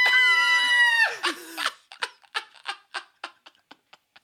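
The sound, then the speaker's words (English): A person imitates a shrill, sustained scream for about a second, sounding a little distant from the microphone, followed by a string of short, choppy bursts of laughter. “That was such a good scream, dude. Like from a far away on the mic.”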